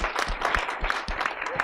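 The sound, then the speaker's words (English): An audience breaks into steady applause, a dense wash of many hands clapping at a moderate, even loudness for the whole moment, with no voices standing out. “I feel like we're going to clap after every answer because we're all just so excited.”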